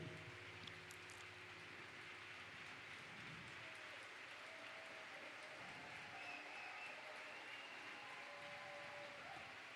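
An audience applauds steadily for the whole stretch, a dense, even wash of many hands clapping with no pauses, holding at a constant level from start to finish.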